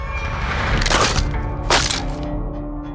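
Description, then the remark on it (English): Two heavy, sharp cracking impacts about a second apart, the sound of a wooden fiddle being stomped and splintering, followed by lingering low creaks and rattling fragments with no voices. “Canute stomped on the fiddle, splintering it into pieces.”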